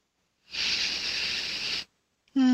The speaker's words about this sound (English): Just breathing in.